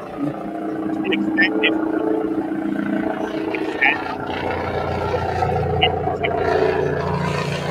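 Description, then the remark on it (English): A steady, helicopter-like roar of low rumbling engine noise fills a caller's phone line for about eight seconds without letup, cutting off his speech, with indistinct voices mixed into the drone. “We heard like a helicopter or something.”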